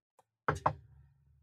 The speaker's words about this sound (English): I'm hoping that never happens. Knock on wood, dude.